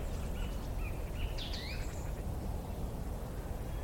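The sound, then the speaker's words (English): A song thrush sings a few short, whistled phrases from trees in the countryside in the cold time of year, partly masked by a steady low rumble of wind or outdoor noise. No one speaks. “Just the song thrush there, beginning its soundtrack.”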